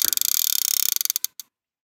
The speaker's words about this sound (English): Do I start reeling it in?